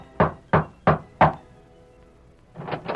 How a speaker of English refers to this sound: Tom Byerly rapped at the door of Mark Paulson's ranch house, then...